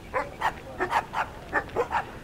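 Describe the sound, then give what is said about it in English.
Dogs bark in a quick, steady series of about eight sharp yaps, heard at moderate volume while descending a hill, with no one talking. “As we descended the hill, I heard dogs barking.”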